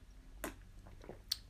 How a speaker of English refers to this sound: Oh, that's a good sip. Good, nice, warm sip. Not over hot, not cold. Nice, almost perfect. Just a little bit hotter would be better.